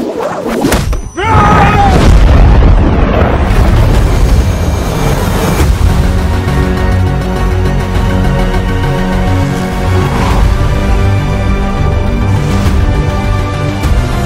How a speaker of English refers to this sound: Kind of seems like the trailer maker like had the stems to kind of potentially bring in different elements, or that was what the augment was doing. But it's an amazingly epic music cue and very relevant.